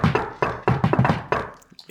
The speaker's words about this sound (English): I'm going to knock the Teenage Mutant Ninja Turtle secret knock on the utility closet door.